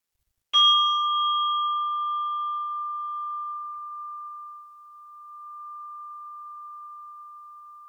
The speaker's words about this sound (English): And I will ring the bell to end this practice.